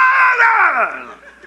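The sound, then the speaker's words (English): A loud, raw chorus of men's voices screams together in a sustained battle cry, shouting "Roll the fire!", that sweeps downward in pitch and fades slightly toward the end. “And on the cue, break the jars, hold up the torches, and start screaming, "Roll the fire!"”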